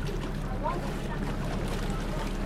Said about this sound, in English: The boat from Picton pulls up at Motuara Island.